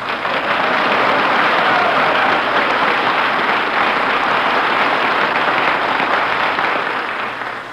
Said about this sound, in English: Gee, was that applause for me?